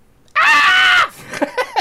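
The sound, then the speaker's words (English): A young boy, pointing up at an album's close-up artwork of a man screaming, lets out a sharp, loud imitation of a scream, a single sustained "ah" lasting under a second, then drops to a few quieter, broken vocal sounds. “And he points up at it and he goes, "Ah!"”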